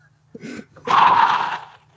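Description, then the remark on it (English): A voice mimics labored breathing as if giving birth: a short huffing breath followed by a longer, loud, forceful gasping exhale, with no words spoken. “Do your breathing.”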